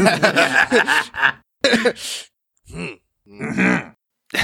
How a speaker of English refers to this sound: Crawlag breaks into a coughing fit.